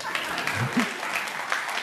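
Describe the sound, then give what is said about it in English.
People listening to a sermon break into applause after the preacher says Jesus rose from the dead. Many hands clap in a dense, steady patter at moderate volume, with a faint voice briefly audible underneath. “So Jesus was, you can clap to that.”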